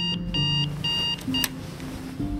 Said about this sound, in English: I was horrified, and the sound just grew to an endless drone, and before I knew it, I was waking up to the sound of my alarm.